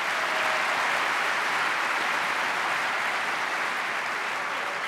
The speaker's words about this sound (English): Let's have a round of applause for sponsors.